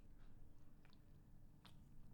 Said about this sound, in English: I am sipping a Ghost Energy Tropical Mango, one of my faves.